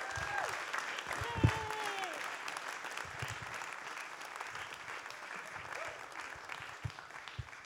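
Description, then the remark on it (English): A crowd claps steadily for several seconds as panel members are called up, a dense, even wash of applause with faint voices and a few whoops rising above it. “he's eking out the applause for all he can get for it”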